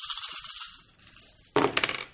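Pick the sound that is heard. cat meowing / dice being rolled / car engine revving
dice being rolled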